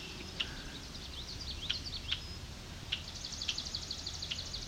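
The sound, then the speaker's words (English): A red-winged blackbird sings outdoors along a grassy trail with very tall grass, sharp high chirps followed by a buzzy trill, repeated a few times over a steady low background rumble. “There's a red-winged blackbird song.”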